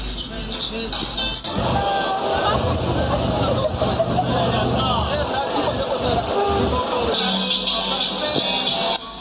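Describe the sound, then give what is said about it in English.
A dense street carnival crowd fills the scene with a continuous, loud roar of overlapping voices and shouts, steady throughout, with a bright hiss and some tonal streaks running beneath the babble, while very loud music plays from a massive speaker and people dance and blow whistles in the street. “So it's very difficult to squeeze through the crowds at the carnival.”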